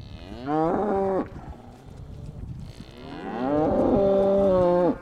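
Two long, loud moos from Black Angus cattle grazing on green pastures at the Van Vleck Ranch in Rancho Murrieta, just outside Sacramento; the first around a second long and the second a drawn-out low call, with quiet outdoor background between them and no talking.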